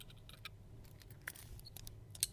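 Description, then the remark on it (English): Keys jangle in a short burst of light, irregular metallic clinks and rattles, fairly quiet, with no one speaking, as the keys are taken off from someone's chest. “Sorry, I had to take my keys off my chest.”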